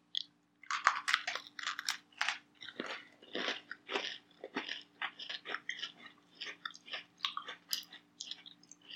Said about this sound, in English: All of these cookies have had a very good crunch. I think it's because they're overcooked.